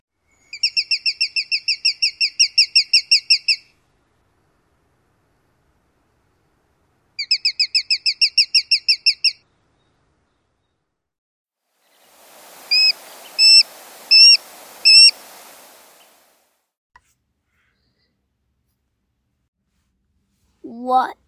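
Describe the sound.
Sharp-shinned hawk calls: two rapid, high-pitched series of sharp kek notes separated by a pause, then a few louder, harsher calls over a hiss. A voice begins briefly at the very end.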